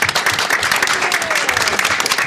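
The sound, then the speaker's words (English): Sustained audience applause at GDC for Kelly Santiago from That Game Company, a dense, steady wash of many hands clapping at a fairly loud level with a faint whistle or cheer rising through it. “Next on our line, and you can keep that applause going because it's Kelly Santiago from That Game Company.”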